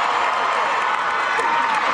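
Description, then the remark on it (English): A concert crowd cheers loudly and continuously as the performer on stage twerks, a dense wall of roaring voices and shouts that stays steady throughout without any breaks. “They're cheering more for the twerking.”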